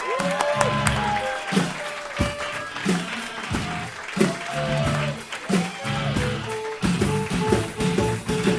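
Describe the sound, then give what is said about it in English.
An audience at a live show claps and applauds steadily for several seconds as a comedian is introduced, a dense wash of hand claps mixed with what sounds like a band playing loudly underneath. “You fuckers are done clapping?”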